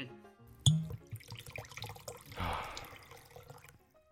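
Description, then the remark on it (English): A sharp click rings out, followed a moment later by a splashy stream of a cold drink being poured out for just over a second, then some faint dripping as it tapers off. “And as we always do, we'll pour one out. A cold one.”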